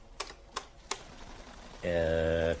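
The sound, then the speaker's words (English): Three crisp, evenly spaced key clicks on a command keyboard, then a steady electronic beep tone lasting under a second, like a terminal acknowledging input. Fairly clear over a faint background hiss. “You have the command keyboard at your fingertips”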